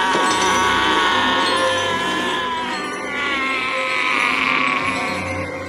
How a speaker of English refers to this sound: Yeah. Here's Mama screaming.